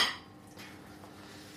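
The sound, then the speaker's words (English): A ceramic bowl clatters sharply as it is lifted out for preparing tofu, followed by a softer knock as it is set down and handled, then a low hum of quiet kitchen background. “What we'll do is we'll get a bowl.”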